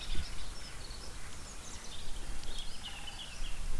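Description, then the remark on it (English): Woodland birdsong with a woodpecker among it: scattered high chirps and calls over a low, steady outdoor rumble, fairly faint throughout. “I'm not very good at bird song, so I don't really know, but I think I can hear a woodpecker.”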